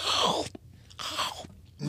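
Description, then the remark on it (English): A voice mimics a man loudly chewing Doritos chips: two broad, noisy crunching bursts separated by a brief pause, with a third starting at the end. “And then he would chew really loudly.”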